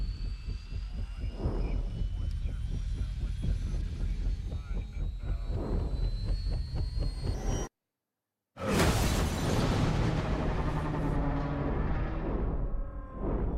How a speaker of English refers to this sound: Anyone else getting 3D audio? Yeah, I bet there was a real big explosion just then.